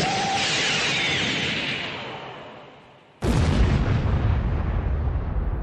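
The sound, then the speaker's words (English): A huge rumbling planetary explosion in a video game roars and slowly fades, then a second massive blast erupts abruptly and keeps thundering loudly. No one speaks. “We survived the planetary explosion because we were brought back to life at, you know, because I saved later at the bonfire in the previous world.”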